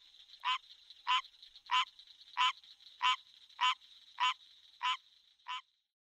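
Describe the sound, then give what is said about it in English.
A frog croaks nine times in a steady, evenly spaced rhythm, each call a short raspy burst, over a constant high insect-like drone. No one speaks. “I panicked for a long time about those frogs.”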